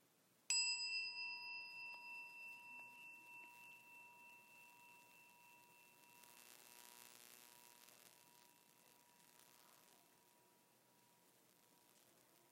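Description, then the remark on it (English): A single bright chime is struck once and rings out alone, its clear metallic tone sustaining with a gentle pulsing shimmer as it slowly fades over many seconds into quiet background hiss. “As we listen to the chime, let us remember our connection to each other and the world around us.”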